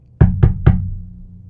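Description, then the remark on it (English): Three quick, evenly spaced knocks on a studio door, fairly loud, with a hollow wooden resonance, fading out with no one speaking. “Is it somebody at the studio door?”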